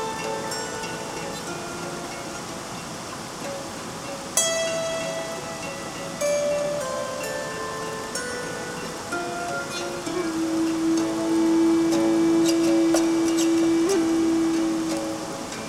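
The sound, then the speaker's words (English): Rushing streams in a forest flow steadily throughout, a dense continuous hiss of water, with long held musical tones of a spontaneous, improvised song rising over it in the second half. “And now, a spontaneous and improvised song I recorded among the rushing streams in the forest from the forthcoming album, ….”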